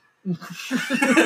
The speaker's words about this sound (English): It sounds like I coughed. Sorry, that was probably easily the douchiest thing I've ever done. I almost choked.